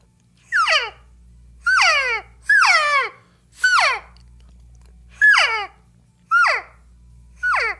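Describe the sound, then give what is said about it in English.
Seven nasal, mewing elk cow calls blown on a September diaphragm reed, used all last season, each a short descending whine repeated at a steady pace with brief pauses between, fairly loud and clear with no talking. “this is a September reed, and I think it's pretty versatile from a cow call to a bugle.”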